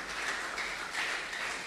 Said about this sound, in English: Shall we give Jesus a wonderful round of applause? Let us also give our daddy a wonderful round of applause for he has used him wonderfully for us this morning.